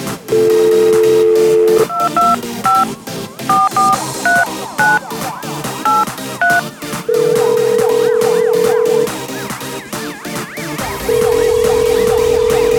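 A steady dial tone gives way to a quick run of about nine touch-tone beeps, then two long, loud ringback tones with a pause between. No one speaks.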